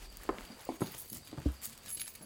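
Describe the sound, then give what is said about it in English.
Quiet, uneven footsteps of people walking inside a house, about five or six soft thuds in quick succession across the floor, with faint hiss in the background. “The footsteps of your parents, recognizing the heavier and slower footsteps from the lighter and quicker ones.”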